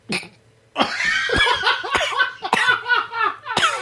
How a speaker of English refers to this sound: Go ahead, cough.